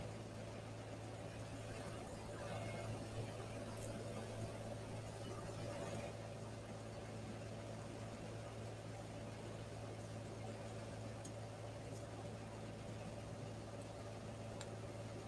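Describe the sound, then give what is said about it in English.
A truck engine idles with a steady, low droning rumble that holds evenly throughout, never revving or fading, with faint background noise above it. “Y'all, this truck moves out the way, we're ready to go to number 3.”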